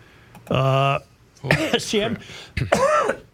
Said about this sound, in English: I'm coughing now.